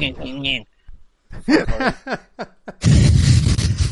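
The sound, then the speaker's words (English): People talk briefly, then a loud, harsh air horn siren blast, the siren from the film The Purge, cuts in and holds steady for about a second, rough and noisy rather than cleanly pitched. “That's just an air horn. Or an air... siren.”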